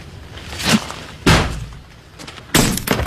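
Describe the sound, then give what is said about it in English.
A thrown brick strikes with a few sharp, loud impacts, a lighter knock then two heavy crashes as it bounces off a coach, the last followed by a bright, crunching shatter of a rental car's windshield glass, in a scene from Meet the Fockers (2004). “Ah, bounces off the coach and breaks the windshield of the rental car.”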